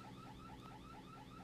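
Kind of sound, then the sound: signal or alarm, car alarm going off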